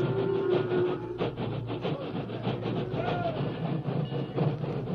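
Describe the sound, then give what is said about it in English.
At sunset, a railroad engine backs slowly into position at a line of railroad cars loaded with cattle, its steady rumble and rhythmic clanking joined by occasional metallic squeals from the wheels and couplings. “The doors were closed, and then, at sunset, an engine backed into position.”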